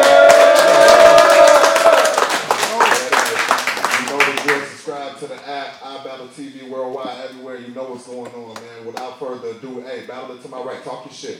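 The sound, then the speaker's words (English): Loud crowd applause for two performers at a battle event, with dense clapping and a sustained whistle-like tone for about four seconds, then it fades under a man talking. “One more round of applause for these two motherfuckers.”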